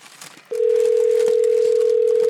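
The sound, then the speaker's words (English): A steady, continuous telephone dial tone starts abruptly after a brief moment of faint room noise and holds at an even, fairly loud level to the end, while a phone call to a guest is being placed from Studio 2A at CPR. “Now, typically, we're in a more comfortable setting, like around a dinner table, but we needed to connect with a final guest on the phone.”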